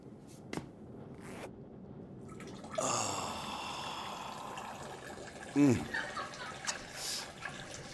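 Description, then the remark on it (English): A steady stream of urine trickles and splashes into a toilet bowl, starting a few seconds in and running continuously, with a few brief clicks and rustles around it. “Oh man, gotta piss like a racehorse.”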